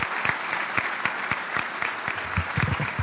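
A room full of people claps steadily for a few seconds, a dense patter of many hands with individual sharp claps popping out, fairly close and moderately loud.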